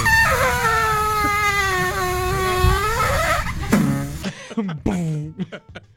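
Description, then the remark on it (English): A waffle maker, from the YouTube video "Waffle Poots", lets out a long, wavering, squealing fart-like noise for about three seconds, then sputters into several short, uneven bursts over a low background rumble. “What you just heard was a waffle maker farting on the show.”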